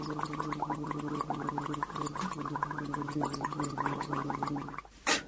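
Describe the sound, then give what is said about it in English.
Steady, bubbling gargle of mouthwash lasting about five seconds, a wet rattling churn with a low hum underneath, ending in a brief louder splash as the rinse is spat out. “Now for a quick rinse,”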